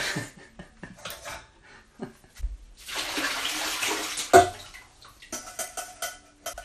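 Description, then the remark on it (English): Splashing and dripping as mushrooms are lifted out of a bowl of cold water, a few seconds of steady sloshing with scattered drips and light knocks around it, and no talking. “Once they've stood a little while in the cold water, then we've got to lay them upon a cloth and dry them.”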